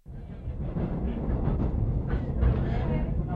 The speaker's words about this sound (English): now on the train, a journalist with the Southern Cross, a very important newspaper for the Irish in the Argentine, and we're heading to the Encuentro.